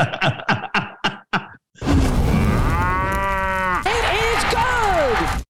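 A cow lets out a long, loud, drawn-out moo that bends up and down in pitch, following a quick series of five short, clipped tonal calls.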